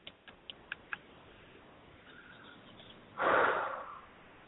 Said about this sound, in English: I should stop doing that breathing loudly thing. I mean, I don't hate it. Other people might.